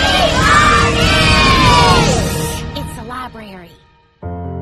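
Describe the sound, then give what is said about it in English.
A crowd in Fort Atkinson cheers and yells loudly for a couple of seconds, voices rising and fading into scattered shouts before the noise trails off, followed by a sudden flat buzzing tone at the end. “Fort Atkinson is cheering for you.”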